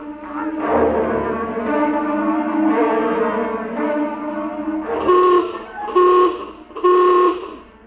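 A general alarm horn sounds three loud, evenly spaced blasts of the same steady, buzzy pitch, following several seconds of wavering, sustained tonal droning. The general alarm is sounded under condition red.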